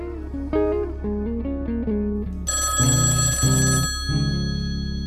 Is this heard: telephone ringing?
yes